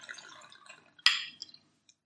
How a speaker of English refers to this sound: Hold on. Let me pour some more of this beautiful scotch.